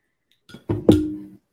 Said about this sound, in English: I don't really have a light beer. Okay. Hey, you're going with it. Are you? You're pouring it in a glass, right? Yeah, so pour it in the glass.